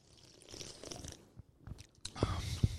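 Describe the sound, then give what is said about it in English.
Wet slurping sounds of someone taking a sip of a gingery alcoholic drink, with soft mouth noises and a couple of louder smacks near the end; no talking. “Let's and a go. Sip.”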